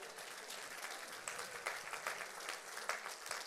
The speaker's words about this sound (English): I got two people clapping. I'd all clap to that if I was you.